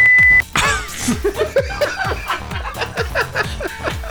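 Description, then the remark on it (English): A short, steady censor beep sounds loudly at the very start, then cuts off into snickering laughter over a rhythmic, thumping low beat. “I had to beep that out for fear of a lawsuit.”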